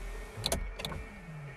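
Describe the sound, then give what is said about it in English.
A car's power window motor whirs slowly and steadily while the car is switched off, with two brief clunking bursts partway through, fairly quiet, with no voices. “Stop, you're gonna break the window fucking engine.”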